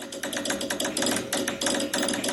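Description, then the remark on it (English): A telegraph key clatters out Morse code: rapid, uneven bursts of sharp clicks in short and longer groups, with a faint steady hum underneath and no voices. “The dots and dashes of Morse code.”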